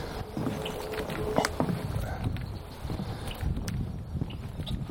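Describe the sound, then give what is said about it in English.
Gusty wind buffets an outdoor microphone while someone tries to record frogs, producing a loud, continuous low rumble that surges and dips throughout, with faint background sounds underneath. “It's windy again, damn it.”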